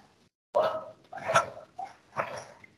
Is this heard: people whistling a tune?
no